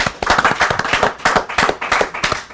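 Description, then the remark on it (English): A group of people claps steadily, a dense patter of sharp, crisp hand claps with an uneven rhythm that stays loud throughout, with no voices. “we just have to give him the clap.”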